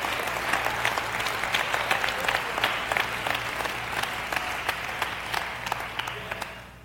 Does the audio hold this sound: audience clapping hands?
yes